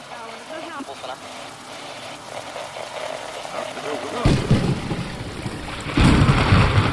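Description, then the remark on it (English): A stormy night: steady rain and gusting wind, then heavy rumbling thunder crashing in loudly about halfway through and swelling again near the end. “The force of devilish winds and sounds of thunder in the skies caused Alan to jolt awake.”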